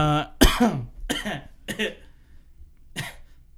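Four harsh coughs from someone close by, the first the loudest, coming in an uneven sequence with short pauses and a longer gap before the last one. No talking.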